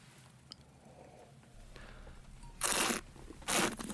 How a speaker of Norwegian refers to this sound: Det slurpes og smattes I studio.